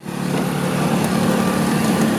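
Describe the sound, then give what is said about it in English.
The engine of a small yellow open-air two-seater Go-Car tourist car in San Diego buzzes steadily and loudly, a constant high, raspy drone like a go-kart motor running for a couple of seconds with no speech. “Little yellow two-seaters that sound like go-karts, but these are go-cars.”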